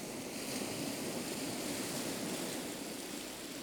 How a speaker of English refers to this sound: This seascape was recorded by … for ….